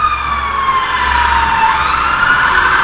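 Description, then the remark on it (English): Two fire engines pass by, a loud siren wailing steadily with no one talking, its pitch sliding gradually downward and then rising again amid low road rumble. “Oh, two fire engines going past there.”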